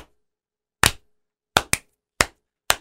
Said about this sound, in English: Golf clap? That's good, man.